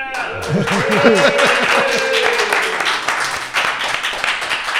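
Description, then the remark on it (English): A crowd at First Pitch Arizona bursts into loud cheering and whooping over steady applause, with rising shouted voices at the start and dense clapping sustained throughout. “Ask the crowd, how we doing?”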